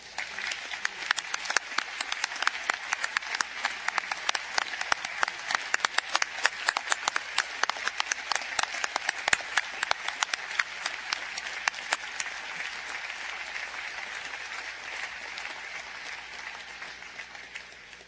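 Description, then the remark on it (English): Sustained applause from a large audience of graduates and guests at a university, applauding the outstanding accomplishments of honorary degree recipients: dense, crackling hand claps with no voices, holding steady for the whole stretch before gently thinning out at the end. “Now I would ask all of our honorary degree recipients to stand once more, and I would ask our graduates and guests to join me in applauding their outstanding accomplishments.”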